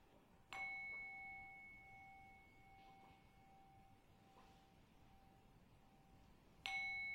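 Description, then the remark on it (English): A meditation bell is struck twice, several seconds apart, to end a meditation session, each strike blooming into a clear, steady ringing tone that lingers and slowly fades. “Well, I'm going to ring the bell 3 times. And after the 3rd ring, we end the meditation for tonight.”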